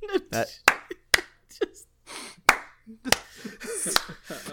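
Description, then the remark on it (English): A handful of sharp, loud hand claps land at uneven intervals, about six in all, scattered between bursts of people talking. “Take your stupid fucking clap, then.”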